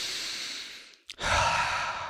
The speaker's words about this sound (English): Now, when he's ready to get going, he has us do a bunch of deep breaths together.